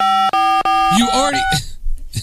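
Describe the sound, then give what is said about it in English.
Three quick electronic telephone keypad tones beep in close succession, steady and fairly loud, from a caller on a live radio call-in line, then a voice starts speaking right after them. “You already called us. You don't have to call us again.”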